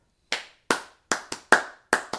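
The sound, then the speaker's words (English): Seven crisp, bright handclaps sampled from an older record and chopped up for the number of claps ring out alone in a syncopated pattern, some landing in quick pairs, each with a short fading tail and no voices. “And the handclaps were sampled by...”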